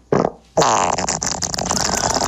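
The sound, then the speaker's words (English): A loud, wet, gurgling fart: a short sputter, a brief pause, then a longer bubbling stretch that flutters in uneven pulses with a slight echo. No one speaks. “His butthole is gargling water.”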